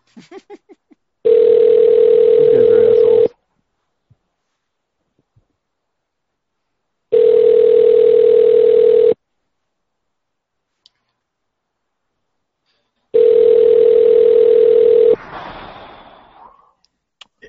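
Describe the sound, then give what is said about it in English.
A phone line rings three times, steady two-second electronic tones separated by long silent pauses, with a clatter of noise cutting in as the last ring ends; nobody picks up. “Walmart, shop happy, but don't expect us to answer the fucking phone.”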